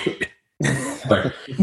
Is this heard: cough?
yes